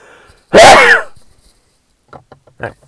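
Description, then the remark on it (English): One loud, sudden human sneeze, a sharp explosive burst lasting about half a second, followed by a few faint, brief vocal sounds. “Sorry about the sneezing.”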